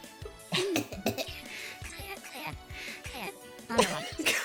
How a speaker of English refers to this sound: Coughs.